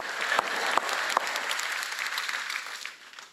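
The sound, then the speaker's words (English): Audience applause called for the cafe's sugar cookies: a dense, steady patter of many clapping hands, with a few sharper individual claps standing out early on, before the clapping tapers off at the end. “Guys, you should at least clap for the sugar cookies.”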